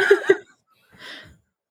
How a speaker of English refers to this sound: Oh my god, I keep yawning. I'm sorry.